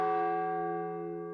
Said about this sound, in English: Then the big bell struck 1.